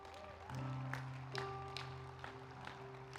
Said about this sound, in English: Can we just give a clap for Jesus? He is good.